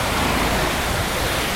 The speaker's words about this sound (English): Whoa, this truck just passed me by. Yeah, it's almost no distance, so I got a lot of water from its tires.